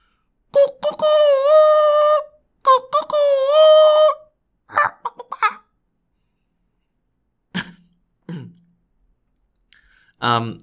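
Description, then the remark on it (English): A human voice imitates a rooster crowing twice, each loud, drawn-out call lasting about a second and a half, followed by a few brief scattered clicks and short vocal noises. “The other one then said, "Well, my special skill is I'm able to call like a rooster."”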